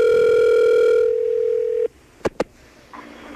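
A steady telephone dial tone hums for nearly two seconds, then cuts off, followed by two quick clicks and a faint tone as the call connects. No one speaks.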